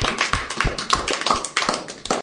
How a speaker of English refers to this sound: Thanks, boys, for a great session. Who enjoyed that? Yeah. Awesome. Well, we'll see you guys back in a couple of weeks. Let's give a big clap to finish off, yeah?